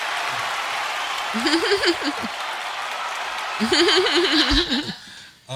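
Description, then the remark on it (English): An applause sound effect played from a button: a steady wash of applause runs throughout, with a few cheering or whooping voices rising over it in two bursts before the clapping fades out near the end. “Where the round of applause button?”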